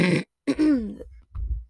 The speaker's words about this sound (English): yeah, my voice is going out. You hear me clearing my throat and shit.